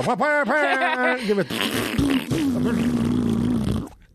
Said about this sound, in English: And Rob Riggle farts loud. Yeah. Oh. Farts wake people up. Riggle wakes people up with his farts.